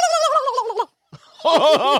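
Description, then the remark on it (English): A person imitates a turkey gobble: a warbling, throaty call, a short pause, then a rapid rolling burst of yodel-like gobbles, loud and with no talking over it. “got the best turkey impression.”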